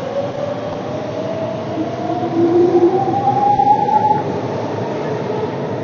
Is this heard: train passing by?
yes